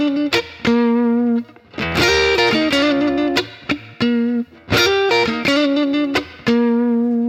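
Distorted electric guitar plays quick muted rakes that snap into short, ringing chirped notes at the 6th fret of the E and B strings, a sustained phrase repeated twice with loud, bright attacks and no talking.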